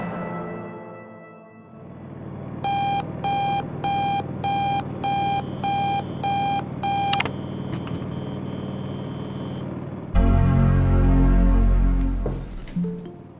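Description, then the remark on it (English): An electronic alarm clock beeps in a steady run of about eight short, loud pulses over a low rumbling background; afterward a heavier engine-like rumble rises. “Sorry, I overslept the alarm.”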